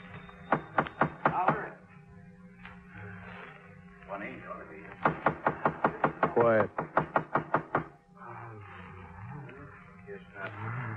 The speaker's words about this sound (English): Come on in, Sergeant. I've been knocking.